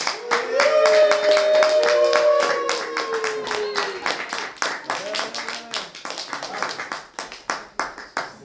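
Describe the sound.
A room full of people breaks into sustained applause, dense clapping with voices calling out and cheering over it, gradually thinning into scattered individual claps toward the end.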